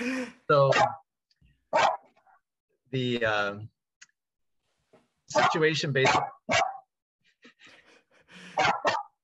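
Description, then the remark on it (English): A puppy barks in the background at home in a series of short, sharp yaps, coming in irregular bursts with brief pauses between them, loud. “So, of course, the dog's going to decide to bark right now.”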